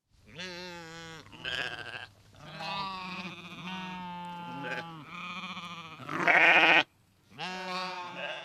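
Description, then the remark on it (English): A flock of sheep on a state farm in the town of Deminkuduk, huddled near a huge trough after being without water all day, bleat over and over, their wavering cries overlapping in a loud, continuous chorus with brief gaps, the loudest burst near the end before a final round of calls. “In the town of Deminkuduk, sheep on a state farm huddled near a huge trough. The animals had been without water all day.”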